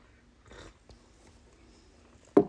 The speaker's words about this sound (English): Sorry for slurping. Drinking a cup, coffee cup that we bought in Zapotlaneo, Jalisco, Mexico. It's got it's black, but it turns, it turns into a painting when it gets hot